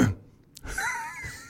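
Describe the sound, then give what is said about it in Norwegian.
A short, raspy throat clearing, a gruff voiced scrape with a breathy intake before it, with no talking. “Men det, kremtingen ødela jo hele åpningen på denne episode 2.”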